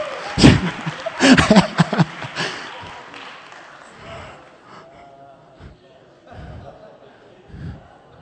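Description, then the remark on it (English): A short burst of audience clapping for a man's wife, loud and sharp at first, then fading over a couple of seconds into scattered thumps and low murmuring. “Look at her and start clapping at her.”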